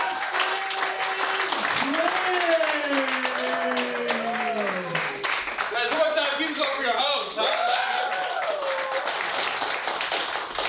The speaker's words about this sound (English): Clap your hands